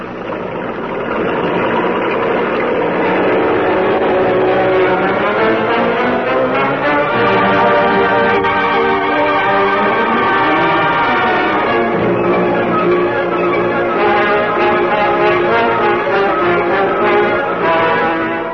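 The engines of a truck and a sedan rumble steadily and loud, with a deep low drone and rising, shifting pitches as the two vehicles pull away and drive off together along a road. No voices are heard.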